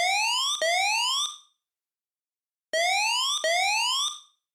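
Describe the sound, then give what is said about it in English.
A loud, bright siren whoops upward in quick rising sweeps, two in a row, then falls silent for over a second before the same pair of sweeps repeats, used in a hip-hop track's beat switch. No drums or voices accompany it. “Most notable about this change in musical atmosphere is the use of a siren.”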